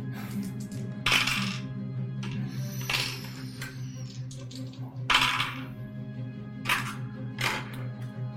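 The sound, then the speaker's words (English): Dice clatter across a table in several short, sharp bursts spread over a few seconds, fairly loud over a steady low background hum, as a player rolls her defense in a game. “And next would be, she's going to roll her defense.”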